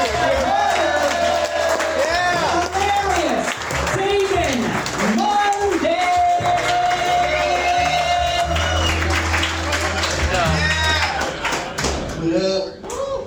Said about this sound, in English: He's here for you right now. Start clapping your hands. He's right there. He's a human being with feelings. Clap louder.